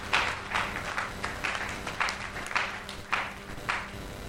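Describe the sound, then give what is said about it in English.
An audience at a church service claps together as a clap offering unto the Lord while taking their seats, the dense crowd applause swelling in a steady pulse about every half second, moderately loud and without any voices. “Why don't you take your seat with a clap offering unto the Lord.”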